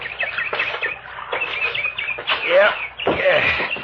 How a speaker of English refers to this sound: Hey, listen to that bird. Sounds like San Diego on a bright June night.